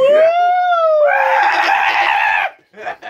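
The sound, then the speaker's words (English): A loud, high-pitched scream: a sustained shrill tone that breaks into a harsher, raspier shriek for over a second, then cuts off, followed by a brief short yelp. “Please stop screaming.”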